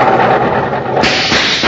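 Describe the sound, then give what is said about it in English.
A car engine running on high-octane kerosene gives a loud, steady roar throughout, broken by a few sharp popping bursts in the last second, like an engine backfiring. No one speaks. “What makes the engine pop like that?”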